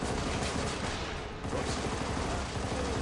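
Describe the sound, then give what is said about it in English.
Dense, continuous video game gunfire with rapid bursts and booming explosions layered together, loud and chaotic throughout, with a brief dip in the middle before the barrage resumes. “More explosions. As many explosions in the game.”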